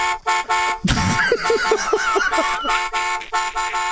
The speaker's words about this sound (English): Oh, it is heaven. That car horn is fucking heaven.